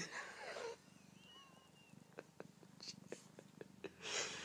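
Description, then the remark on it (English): A male cat purrs steadily while being petted, a low rumbling pulse throughout, with soft rustling and brushing noises from the stroking, brief clicks, and a faint, thin meow early on. “I am petting a cat. He's meowing and purring.”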